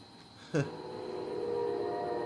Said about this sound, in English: Well, there goes the train. That good old train that comes by late as fuck and early in the morning.